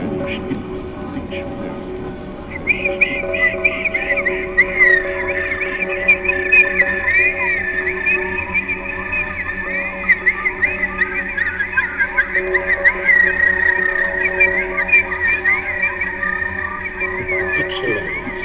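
bird calls

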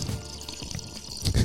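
person sipping water

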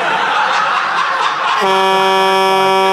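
truck horn honking

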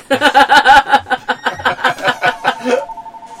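telephone ringing

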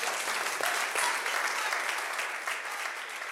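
audience applause and cheering

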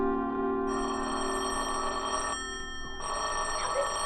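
telephone bell ringing

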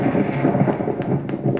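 thunder sound effect

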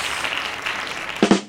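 hand claps sound effect

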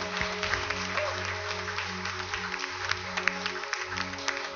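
audience applause

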